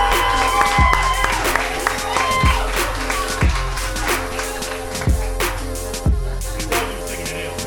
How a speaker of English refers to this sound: Y'all clap it up